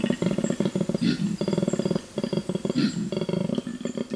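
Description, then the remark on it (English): A koala grunts in deep, rhythmic bellowing bursts, each a rapid train of rasping pulses, loud, repeating across several seconds with no voices present. “I love the sound of grunting koalas.”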